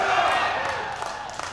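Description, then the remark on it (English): An audience claps and cheers in a steady, dense wash of noise that slowly fades, with a few sharper individual claps standing out toward the end. “These guys are clapping.”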